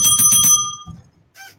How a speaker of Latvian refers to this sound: Tie, kas nezin, esiet uzmanīgi ar austiņām, ir zvaniņš un pie katra bigo.